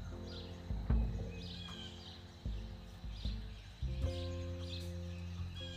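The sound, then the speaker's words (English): Birds chirp in short, scattered bursts every second or so over a steady low rumbling hum with occasional thumps. “Still birds sing.”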